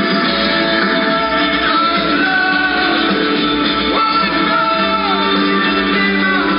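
A loud, muffled phone recording of a live rock concert, with sustained sung or played tones over a dense roar of crowd voices shouting and singing along, steady throughout without pauses.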